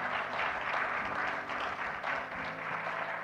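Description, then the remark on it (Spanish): A crowd applauds the Lord steadily, many hands clapping together in a dense, sustained wash of sound that stays loud and even throughout, with faint murmuring beneath. “And why don't you give an applause to the Lord?”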